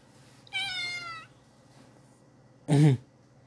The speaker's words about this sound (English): What? What was that? A cat? Oh, it's a cat. Kitten?